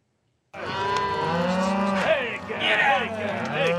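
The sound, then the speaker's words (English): Cows and calves moo loudly in overlapping bellows, several animals calling at once in a steady, continuous chorus with no one talking, as hundreds of cows, mostly mothers with new calves, are moved in a cloud of dust toward high green pastures on the Green River Drift cattle drive in Wyoming, just after dawn in June 2021. “Just after dawn, one Saturday in June of 2021, I'm trying to help Wyoming rancher Albert Summers and his team move hundreds of cows, most of them mothers with new calves, in a cloud of dust toward high green pastures where they'll graze all summer.”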